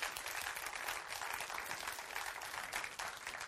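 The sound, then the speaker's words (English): An audience gives a man a hand clap, a dense wash of many hands merging into continuous applause that holds at an even, fairly loud level throughout. “Can we give him a hand clap today?”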